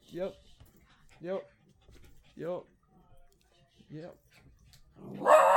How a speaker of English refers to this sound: The dogs have just come back for a walk, so they're all very excited. Lay down and chill. Chill out.